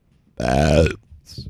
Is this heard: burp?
yes